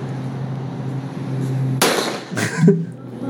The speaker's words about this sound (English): So it obviously sounds like a real gunshot, because it is.